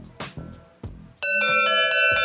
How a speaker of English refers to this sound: That's an old doorbell ringing.